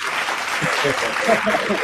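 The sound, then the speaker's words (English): An applause sound effect for an imaginary audience after a correct song guess in a music quiz: steady crowd applause, a dense wash of clapping at an even, fairly loud level, with a few brief voice-like tones poking through near the end. “It's not like they're going to lose any of that applause.”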